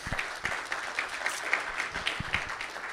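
An audience applauds steadily for three seconds, a dense wash of many hands clapping at a moderate level, with a few sharper individual claps standing out and no voices.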